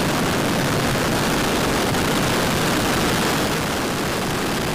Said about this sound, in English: T-minus 10, 9, 8, 7, 6, 5, 4, 3, 2, 1, ignition, engine full power, and liftoff. Go Cygnus, go Falcon.